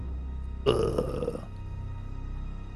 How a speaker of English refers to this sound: Somebody farted.